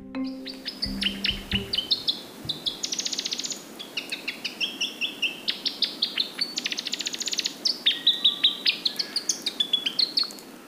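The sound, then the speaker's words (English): A male New Zealand robin sings a long, continuous run of clear, high whistled notes and trills, steady throughout, with a brief low rumble at the very start. “The song of the male robin is an iconic sound of the New Zealand forest.”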